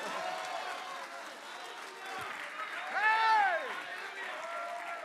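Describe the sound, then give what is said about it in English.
A church audience claps and shouts hallelujah to give a man a hand, in a dense, steady wash of hand claps and raised voices, with one rising and falling shout cutting through for a moment near the middle. “Come on, somebody, just give him a hand. Hand clap and a shout hallelujah.”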